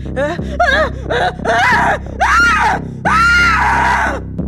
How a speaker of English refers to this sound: It's … who screams. Not me. Not just at the sight of what's happened, but because … now scuttling along the floor, grabbing at …, pulling her down to the ground.